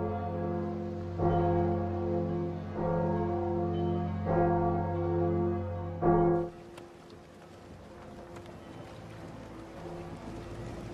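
Church bells, rung during the Battle of the Blackwater, toll four times at slow, uneven intervals, their rich tones ringing and overlapping before cutting off, leaving a soft windy rush in the background. No one speaks.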